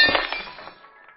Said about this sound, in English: You break a glass? Oh, that was there earlier.